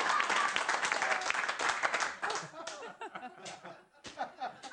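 A stand-up comedy audience breaks into dense, loud applause after a joke about Greg Gutfeld being banned from the Planet Fitness sauna, with many overlapping claps, which thins out after a couple of seconds into scattered clapping and a few laughs before a last brief swell.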